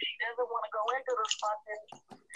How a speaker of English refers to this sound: I can't hear. It's breaking up. Somebody's got a phone.